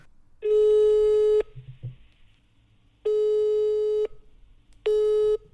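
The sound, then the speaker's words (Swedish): A telephone busy signal sounds three times as a phone call is rejected, steady electronic beeps of about a second each separated by short silences, clear with a faint low hum underneath. “Tryckte bort oss.”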